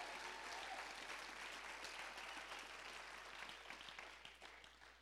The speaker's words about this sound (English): How many of you are, come on, clap for the Lord right now.